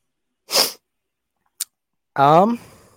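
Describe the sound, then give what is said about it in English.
A short, sharp sniffle bursts out, followed by a faint click, then a brief voiced sound with a falling pitch, like a sigh or groan. “That sniffle said it all.”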